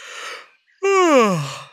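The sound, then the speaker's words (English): A person yawns once: a long breathy inhale, a brief pause, then a loud voiced exhale that slides downward in pitch and trails off. No speech. “Just thinking about yawning can make you yawn.”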